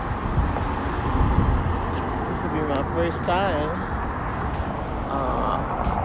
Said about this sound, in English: I think the bus coming.